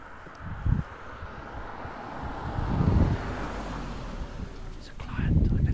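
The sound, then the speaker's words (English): A car driving along a road near Goodwood Race Course, its engine noise swelling and fading amid gusty wind on the microphone, with faint, indistinct voices underneath. “…'s just bumped into a client of his driving along the road”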